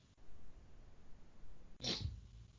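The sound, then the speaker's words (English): A person gives a single short, sharp sniff, a quick burst of breath through the nose over quiet low background noise, with no talking. “Did you sniff the cat?”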